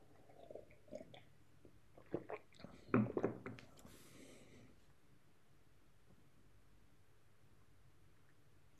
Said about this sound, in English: Another sip of tea, then we'll bring this to a conclusion.